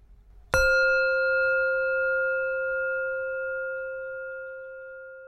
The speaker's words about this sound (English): From time to time, you will hear a chime.